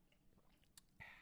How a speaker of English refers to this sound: I'm going to let you finish sipping that dirty. How it taste? How that DS2 taste?